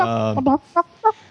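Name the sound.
person imitating chicken clucking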